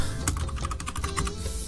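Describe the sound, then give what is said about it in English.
Rapid typing on a computer keyboard, a quick run of crisp key clicks in an uneven rhythm, heard on its own with no one talking. “It is time for the keyboard noises.”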